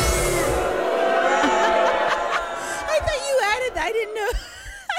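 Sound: crowd booing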